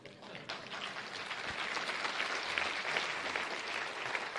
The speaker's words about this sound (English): Yes, you can clap for Yeshua.